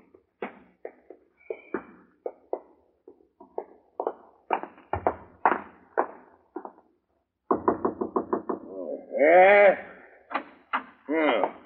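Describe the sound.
Repeated sharp knocks on a front door come in irregular bursts, clear, followed by voiced, bleat-like vocal sounds near the end.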